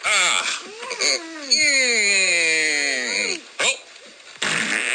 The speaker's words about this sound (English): Those are the same fart sound effects from the fart machine. Yep.